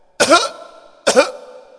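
Two loud, close coughs about a second apart, each a sharp harsh burst trailing off into a brief voiced rasp, with no talking around them.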